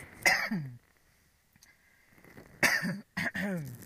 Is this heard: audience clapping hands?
no